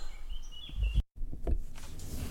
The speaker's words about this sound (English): And I'm outside, I forgot to mention that. Can you hear the birds?